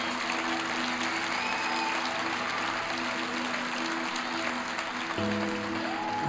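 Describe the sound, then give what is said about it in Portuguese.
A church audience applauds the name of the Lord in a steady, dense wash of clapping that holds for several seconds, with a sustained organ or keyboard chord ringing underneath and shifting near the end. “Está muito fraco, você pode aplaudir o nome do Senhor.”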